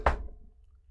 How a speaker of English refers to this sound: Then it's a knock on the door.